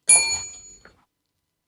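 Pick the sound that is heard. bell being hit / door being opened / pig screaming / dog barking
bell being hit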